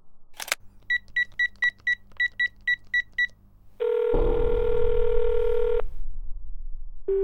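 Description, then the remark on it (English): A click, then about eleven quick keypad beeps as a phone number is dialed, followed by a long, steady ringing tone over a low background rumble. A brief tone returns at the end. “I guess there's no other option then. Hand me the phone.”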